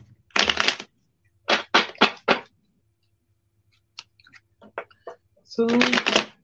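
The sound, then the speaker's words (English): Crisp bursts of a deck of tarot cards being shuffled three times before a three-card reading: a quick run of three riffles, then scattered light card taps and a final longer shuffle. “Shuffle them 3 times, so I'm going to give you a reading.”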